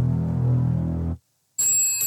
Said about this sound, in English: Well, the phone's ringing.